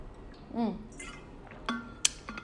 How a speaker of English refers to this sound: Again, I'm taking another sip of water. I'm so sorry.